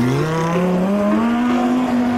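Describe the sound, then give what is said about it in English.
A Lamborghini sports car engine revs hard and accelerates, its pitch climbing steadily in a loud, continuous roar with no voices. “Now that's speed racing.”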